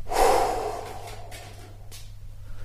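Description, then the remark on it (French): One long, forceful exhale bursts out, loud at first and then trailing off into quiet breathy air, with no talking. It comes in a relaxation exercise after inhaling deeply, holding the breath and shrugging the shoulders, letting go on the breath. “On bloque la respiration, on hausse les épaules en mettant dans le haussement d'épaule toutes les choses négatives qui nous embêtent, tout ce qui nous dérange.”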